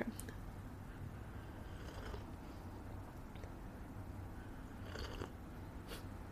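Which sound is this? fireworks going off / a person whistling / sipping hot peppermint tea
sipping hot peppermint tea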